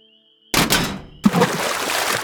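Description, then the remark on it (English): After a faint hum, a sudden hollow clunk bursts out as an old crawfish cage is accidentally knocked over from the edge of a porch, then a second heavy splash as it hits swamp water, followed by sloshing and churning. “The sudden noise startled me as I realized that I had accidentally knocked one of our old crawfish cages into the swamp, and it wasn't tied off.”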